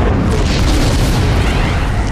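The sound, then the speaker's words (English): A loud, booming crash of a spaceship slamming directly into a secret base, with dense rumbling debris noise sustained throughout the two seconds, overwhelming, no voices. “the banging of Moff Gideon's ship directly into his secret base, which I guess is more of a booming”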